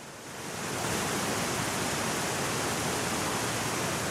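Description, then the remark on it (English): A loud, steady roar of a 30-foot waterfall and churning white water on the Ashley River in southwest British Columbia, swelling in over the first second and then holding as a dense, unbroken rush with no voices. “This is big, gnarly white water. The 30-foot waterfall in front of me, the paddlers call it 50-50.”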